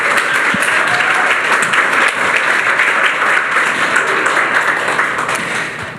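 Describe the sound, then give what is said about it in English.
Sustained applause from a crowd honoring the Beloved Ministry team, a dense wash of many hands clapping at a steady loud level for several seconds before easing off slightly at the end. “Let's honor the beloved team by giving them a round of applause.”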